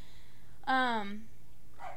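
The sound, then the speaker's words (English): A single drawn-out bark from the dog Rocco, apparently a human voice imitating a dog, sliding down in pitch over about half a second and clear, then a brief faint sound follows. “Oh, no, he barked again.”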